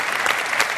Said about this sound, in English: Yes, you can clap. Thank you.